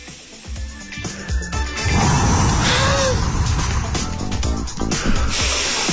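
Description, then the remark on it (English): A voice imitates the sound of a little race car heard from a pram hurtling down Nelson Street, a loud, buzzing engine drone with a brief rising whine partway through, held for several seconds over a noisy, hissy background. “And in the pram, I can just hear this. A little race car.”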